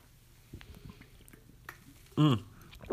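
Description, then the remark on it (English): Quiet wet sipping of water and small mouth clicks from a Red Robin drink bottle, with water spilling, followed by a loud, brief voiced gulp or exhale near the end. “Let me get a sip of water in my Red Robin's bottle.”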